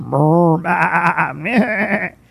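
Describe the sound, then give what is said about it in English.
A person imitates the call of herds of cattle, making one loud, wavering call of about two seconds that quavers through a few shaky pulses before breaking off. “Quiet down, herds of 10,000 cattle.”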